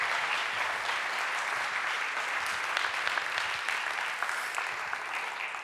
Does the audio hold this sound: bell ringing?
no